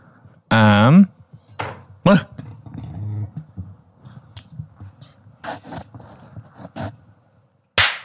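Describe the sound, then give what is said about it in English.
A handful of sharp sync claps for syncing a recording snap out at irregular intervals, the last one especially loud, with bursts of voice and quieter rustling in between. “Sync clap. Sync welcome clap.”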